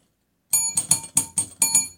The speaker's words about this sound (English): Pretty purdy inspired bell ringing today. Pretty purdy.